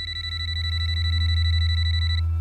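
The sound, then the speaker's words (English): A telephone rings sometime before dawn, a call from a hospital chaplain, with a rapid, high-pitched electronic trill that pulses steadily for about two seconds, then cuts off, over a constant low hum. “When the phone rang sometime before dawn, Carrie nearly hyperventilated.”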